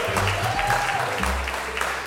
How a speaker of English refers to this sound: Let's give it up for these Triple Crowners. Give a round of applause, Triple Crowners. Yes.